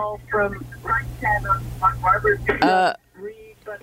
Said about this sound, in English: …, you have an echo there. You've got to turn down your radio.